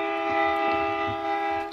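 A steady, loud train whistle effect blows continuously with a rich, multi-toned sustained pitch, holding for a couple of seconds without pause, clear with no voices.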